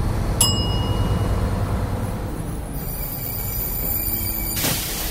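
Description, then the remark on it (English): A bus stop request bell rings once with a bright ding that fades, signalling a request for the next stop, over a steady low rumble of the moving bus; a high sustained electronic tone follows later. “I'll let you know when to ring the bell for our stop, okay?”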